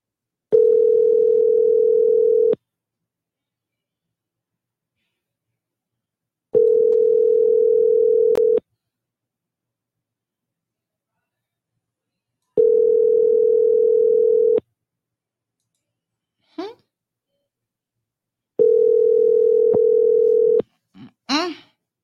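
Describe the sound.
An unanswered phone call's ringback tone repeats four times, each steady hum lasting about two seconds with long silent gaps between, heard through the line; a couple of short clicks or voice fragments appear near the end.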